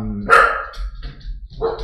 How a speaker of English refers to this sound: Got three dogs here. Yeah, three dogs, three dogs.